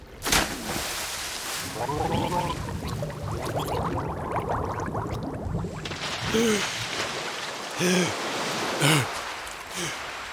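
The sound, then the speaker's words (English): Steady rushing water of the Phalor River fills the scene, with a few sharper splashes near the end, while someone grunts and pants over the flow as a satchel is heaved onto the riverbank. “Sticklore heaves his satchel onto the banks of Phalor River as Stanek drags himself into a puddle of black mud.”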